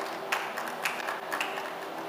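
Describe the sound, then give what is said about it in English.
A church audience claps together as a clap offering to the Lord during a sermon, a steady, dense wash of applause with a few sharper claps standing out, sustained at moderate volume for a couple of seconds. “Give the Lord a good clap offering, someone.”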